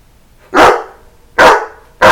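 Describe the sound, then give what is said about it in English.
A dog barks three times, loud, each sharp bark spaced about a second apart with quiet in between and no voices. “That's dog for It's Bobchat, Baby. Who let the dog out?”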